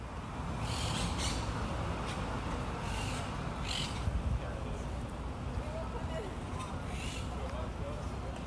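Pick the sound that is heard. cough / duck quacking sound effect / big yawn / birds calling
birds calling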